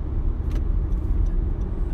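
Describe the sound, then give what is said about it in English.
Steady low rumble of a car moving through traffic as the driver tries to change lanes, a continuous engine and road drone filling the whole stretch, with a few faint clicks and rattles on top and no talking. “Sorry, this guy wasn't going to let me get over in traffic.”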